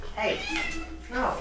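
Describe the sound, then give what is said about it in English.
A cat, Scout, meows insistently while trying to escape, a drawn-out wavering cry followed by a shorter second meow a moment later, clear. “My cat's trying to escape.”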